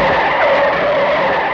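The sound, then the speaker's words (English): A loud, sustained car skid with a steady high tire screech holding for over a second, continuous, with no voices: a car coming around a blind bend skids toward a Delta petrol tanker lorry in a Gerry Anderson show. “So anybody coming around this corner, like Judy Chapman, chances are he's going to plough into this Delta petrol lorry.”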